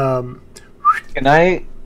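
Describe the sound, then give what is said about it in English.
A short, bright whistle from a man sweeps upward, set between brief voiced, hummed vocal sounds, all fairly loud. “And he kind of whistles.”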